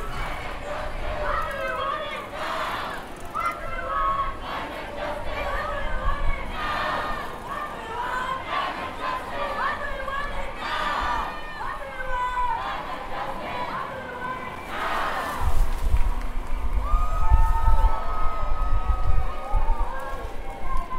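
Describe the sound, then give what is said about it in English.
A large outdoor crowd of marchers at the Global March for Climate Justice, by the Fridays for Future block on a windy street in the centre of Glasgow, fills the air with overlapping voices, shouts and chanting, with a steady rush of wind beneath and a louder, rumbling swell near the end. “I'm just ahead of the Fridays for Future block at the Global March for Climate Justice.”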